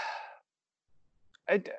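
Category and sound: human body sound, yawn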